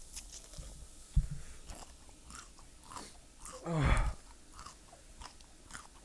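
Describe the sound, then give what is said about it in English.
Close-up crunching as crunchy food is bitten and chewed right against the microphone, with a series of irregular crisp crackles and one louder, heavier crunch near the end. No talking. “I'm putting the crunch in the mic.”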